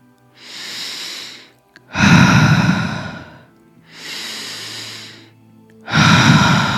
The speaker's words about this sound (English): Breathing into your heart. We are breathing new energy into our heart, and we are exhaling whatever is stuck, whatever doesn't feel good, whatever we need to let go of.